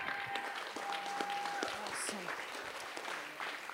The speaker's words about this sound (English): Somebody clap those hands and give God praise right now.